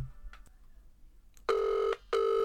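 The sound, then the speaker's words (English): Two steady tonal beeps of an outgoing phone call's ringback tone, each lasting about half a second with a short gap between, preceded by faint clicks and quiet background. “Yeah, it's ringing.”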